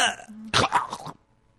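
A harsh throat clearing followed by a rough burst of coughing, lasting about a second before fading into near silence.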